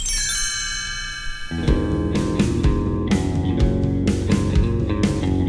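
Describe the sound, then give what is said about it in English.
A bright, shimmering chime rings out clearly and lingers as it fades, a cue to turn the page. Then a full music track with a steady beat comes in and takes over. “You will know it is time to turn the page when you hear the chimes ring like this.”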